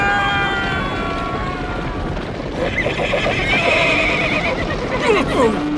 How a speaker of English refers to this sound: That's when Marshal Brown hears Ruby as she shoots a load of bull. Stampede!